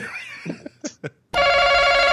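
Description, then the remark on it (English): A few brief chirps and sweeping tones lead into a loud, steady electronic phone ring as a caller, the host's wife, buzzes in to the show, a bright, buzzy harmonic tone that continues to the end, with no talking. “She's buzzing in.”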